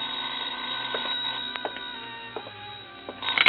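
telephone ringing

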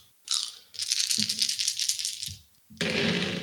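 many dice being rolled

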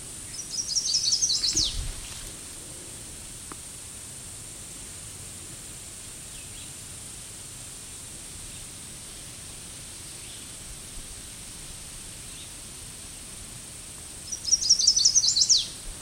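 loud bird calling

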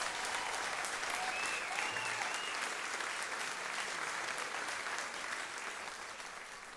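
audience applause

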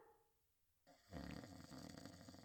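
man snoring

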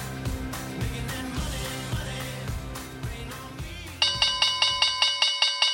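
bell ringing

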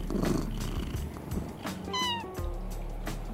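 cat meowing

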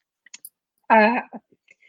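cough

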